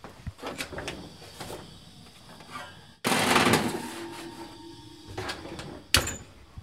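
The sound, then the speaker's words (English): An oven door opens with a clatter, then a longer scraping rumble as a pan of oats and nuts coated in syrup and oil slides in to bake, and the door shuts with a sharp thump. Fairly loud, with no talking. “You're going to want to kind of shake it down to an even layer and then put it in the oven.”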